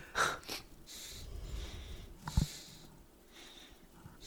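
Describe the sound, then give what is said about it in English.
Quiet breathing through a stuffed nose, with a thin, high whistle catching on a breath or two, plus a short snuffly burst midway. No one speaks. “Someone's nose is whistling, and I don't know who it is.”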